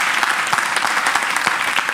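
An audience claps for Jesus steadily for two seconds, a dense, even patter of many hands with sharp individual claps popping out of the wash, fairly loud and without voices.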